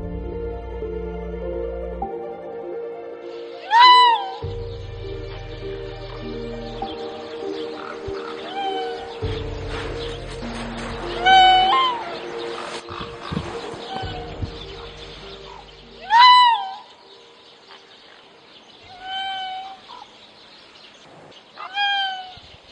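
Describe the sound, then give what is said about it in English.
A canid gives a series of high, cat-like meowing calls, four or five distinct wavering cries spaced several seconds apart over a steady low background hum, with no talking. “You wouldn't expect that from a dog species or a species of canid to sound like that.”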